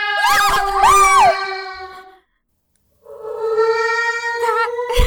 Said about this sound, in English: That cat! Yeah! It sounds huge, doesn't it? That's because it's so quiet in the house.